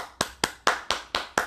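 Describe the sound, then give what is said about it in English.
Six crisp hand claps in a steady, even rhythm, fairly loud, like one person applauding alone with no voices present. “If you are listening out there and you can honestly say you have never second guessed who you were, then I'm going to just give you a round of applause right now.”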